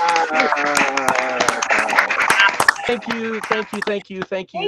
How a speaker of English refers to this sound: But because you just finished performing, we're going to clap for you now. So here we go, everybody. Clap. Yeah.